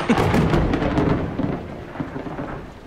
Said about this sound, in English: It's pretty dark and this rain's going to get heavier.